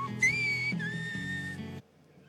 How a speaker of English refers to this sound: That is a whistling language spoken in the Canary Islands. So they can, because the Canary Islands apparently are very mountainous